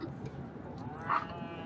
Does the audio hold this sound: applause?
no